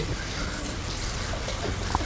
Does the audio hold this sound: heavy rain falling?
yes